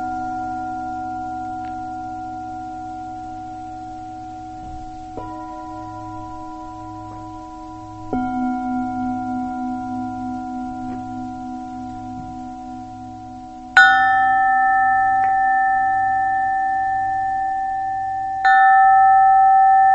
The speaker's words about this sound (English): The sounds of the bells, the sound of my voice,